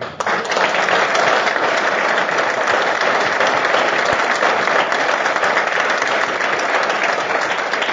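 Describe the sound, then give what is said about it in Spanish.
Sustained audience applause at a press conference, a dense steady roar of many hands clapping at an even loudness for the whole stretch, with no voices standing out. “Me olvidé de pedirles una cosa, que no aplaudan en la conferencia porque los periodistas no les gustan.”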